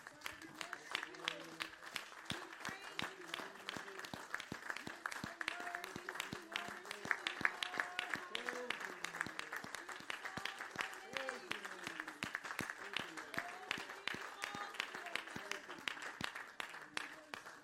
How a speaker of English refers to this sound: Let's stand together, give Jesus a hand clap of praise this morning. Amen.